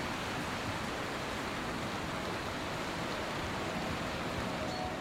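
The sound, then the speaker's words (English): The River Derwent, swollen and in full spate just over the other side of a wall, rushes past in a steady, unbroken roar of churning water, a dense continuous hiss with no voices and no pauses throughout. “And by the sound of it, the river just over the other side of this wall is in full spate.”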